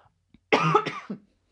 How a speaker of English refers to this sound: Pardon me. I just coughed. There's a tickle in my throat. Tickle. That always happens. I'm going to have to cough. This is happening.